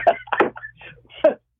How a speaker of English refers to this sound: No, see, I got you coughing again. I always make you cough.